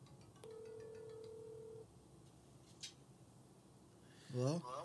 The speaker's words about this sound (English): Yeah, I'm giving him a call.